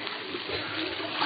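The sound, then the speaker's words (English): Piping hot water runs steadily from a faucet in a continuous, even hiss and splash, moderately loud, with no break for the whole moment; the pipes do not knock. “Well, then let's try that faucet again.”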